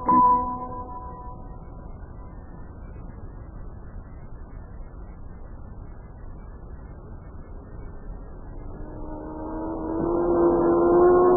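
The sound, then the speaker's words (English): A droning engine hums steadily throughout, then swells louder near the end as a high-pitched racing motor roars, a race car speeding by on a racetrack during time trials. No one speaks. “That car was really traveling all right.”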